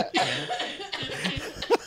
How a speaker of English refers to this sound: Are you okay? Jesus, I'm sorry. I'm at the end of a cold and the cough takes forever. Oh my God. I haven't had a cough like that in a while.